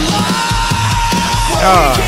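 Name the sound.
screamed vocals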